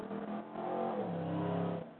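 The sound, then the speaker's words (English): A loud motorcycle engine revs and roars past outside a window, its pitch rising and holding steady as it passes, then begins to fade away, with no voices over it. “Motorcycle coming through my window.”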